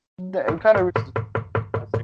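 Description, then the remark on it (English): A brief voice is followed by six quick, evenly spaced knocks on a wooden board, heard over the phone, fairly loud, each a short hollow thud in a steady rhythm. “I just heard someone knocking over the phone.”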